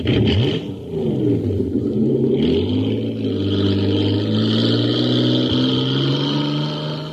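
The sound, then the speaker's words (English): A loud racing engine of the Shooting Star in a jet boat race on Mars, supercharged with super fuel, revs up. Its pitch climbs through rising harmonics before settling into a sustained high-speed roar as it speeds off, with no one talking. “Wow, look at the Shooting Star go. It's bound to be a winner now because she's supercharged.”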